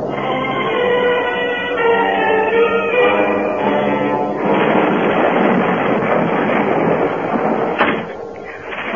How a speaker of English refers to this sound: Oh, and sakes, child, let's get you out of that rain and a fine welcome home.